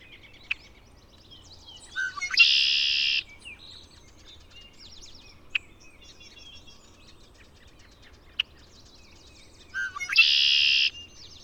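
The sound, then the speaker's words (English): Red-winged blackbird songs from a tree next to a pond: two loud, buzzy trills about eight seconds apart, with sharp short chips scattered between them, clear over a quiet background. “In a tree next to the pond, the blackbird with the red shoulder patch. A red-winged blackbird.”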